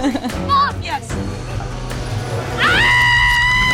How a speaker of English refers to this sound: Finally, one of the people, this woman who's just like watching the news in bed, just screams, right? As you heard.